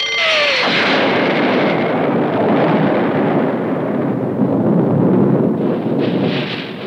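A bomb explosion in the Peter Pan story, set off by Captain Hook to kill Peter Pan: a loud, sustained roaring blast that fills the whole clip with dense rumbling noise, a brief falling whistle at the start, and no voices.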